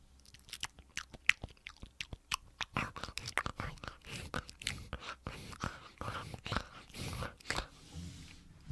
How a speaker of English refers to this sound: Baron chewing on his rawhide chew toys.